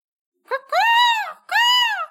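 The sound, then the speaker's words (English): A person imitates a raven's caw in a contest to decide who goes first: a quick clipped lead-in, then two drawn-out, nasal cries whose pitch rises and falls, fairly loud, with a brief gap between them and no other talk. “And the method for choosing who goes first is who does the best raven caw.”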